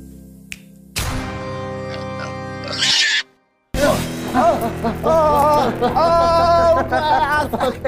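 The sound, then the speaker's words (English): Several voices mimic pig oinks in a sung, melodic way, loud, with wavering pitched grunts; a short silent break splits two bursts of the playful vocal imitation. “Pig musicals are actually simple. It's just oink, oink, oink, oink, oink, oink.”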